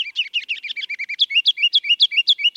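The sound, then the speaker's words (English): A ruby-crowned kinglet, a bird about 4 inches long weighing about a quarter of an ounce, sings a rapid, loud series of high, tumbling notes, starting with quick chatter and shifting into a bouncy, repeated three-note phrase, clear with no voices. “That mile of music comes from a bird 4 inches long and weighing about a quarter of an ounce.”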